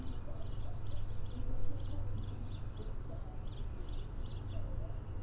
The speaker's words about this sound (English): These two little birds, they playing. That was so cute. They was flying back from tree to tree.